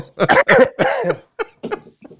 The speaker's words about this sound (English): Yeah, the coughing fit too.